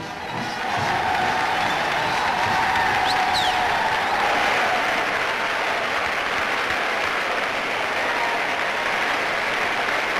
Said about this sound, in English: The Progressive Party takes over in Philadelphia's Convention Hall, the site of the recent Republican and Democratic conventions. Henry Wallace and his family draw loud cheers from 3,000 delegates.